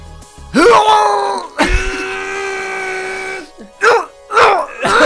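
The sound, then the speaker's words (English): A person vocally imitates the strained grunt of heaving up an 800-pound squat: a rising, drawn-out groan held for a couple of seconds, then several shorter, punchy effortful bursts. “What's your noise going up?”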